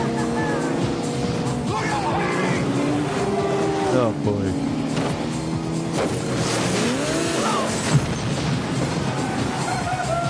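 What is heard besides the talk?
cars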